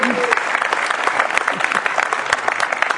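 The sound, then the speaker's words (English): An audience applauding to vote on a speaker's camo hat: dense, steady clapping sustained at an even, fairly loud level throughout, with a few crowd voices mixed in underneath. “So by your applause, votes on the camo hat tonight?”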